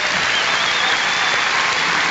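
An audience at an event in Champaign claps steadily, a dense wash of many hands that holds at a fairly loud, even level throughout, with no voices breaking through.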